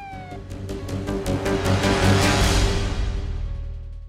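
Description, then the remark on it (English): An ambulance siren wails steadily through a loud, dense wash of street noise, its tone gliding at first and holding strong for a few seconds before easing slightly. “The ambulance sirens wailed as if to underline the solemnity of the occasion.”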